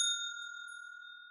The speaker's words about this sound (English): So I am going to hit the bell.